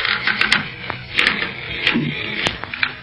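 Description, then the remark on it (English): A bed creaks and clicks irregularly as someone gets out of it, with several sharp, brief creaks standing out over a steady hiss for about three seconds; no one speaks. “Golly, this bed's creaking's almost as loud as Barney's snoring.”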